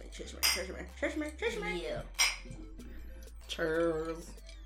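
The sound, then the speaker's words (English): Several bright clinks of glasses tapping together in a toast of cheers, scattered across a few seconds amid lively overlapping voices, like a group toasting around a table after two hours of drinking. “We've been drinking for the past 2 hours. Well, and cheers.”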